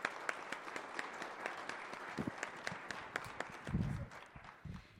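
An audience breaks into a steady round of applause for a panel of experts, dense overlapping claps sustained for about five seconds at a moderate level, with a few low thumps mixed in and no talking.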